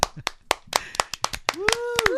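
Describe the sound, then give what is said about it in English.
A steady run of about nine crisp, evenly spaced hand claps, with a drawn-out vocal sound rising over the last few claps, welcoming back a presenter of this week's current events. “Will you applaud her”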